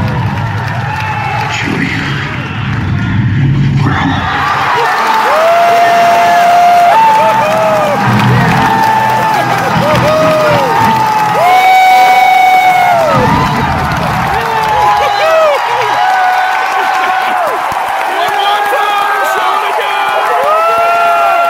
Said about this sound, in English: People are just like screaming, losing their mind, cheering like crazy.